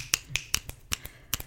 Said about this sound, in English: And I can't recall a time I've ever snapped at anyone. I've never snapped my fingers at anyone. I'm a pretty good snapper. I do.